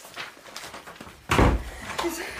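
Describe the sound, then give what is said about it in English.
A door swings shut with a solid thud, followed a moment later by a lighter clack like the lock being turned, against quiet room noise. “Lock the door.”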